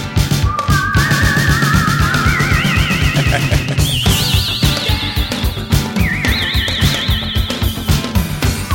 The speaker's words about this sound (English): What in the world? I think this is the Prophet. I know the Prophet can do these kind of weird whistle bird sounds.